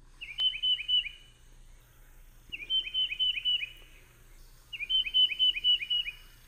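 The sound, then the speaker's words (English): A tufted titmouse sings three clear bursts of its repeated whistled phrase, each a quick series of four or five notes, with short pauses between, over quiet low background hum. “Let's listen one more time to the tufted titmouse.”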